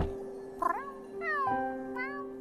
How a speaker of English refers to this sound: Well, it took a lot of looking, but we finally got you a... Your very own little kitty!